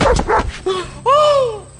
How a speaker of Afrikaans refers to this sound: Wel, het jy nou die honde oor blaf? Ja. Blaf die wolf nog? Nee.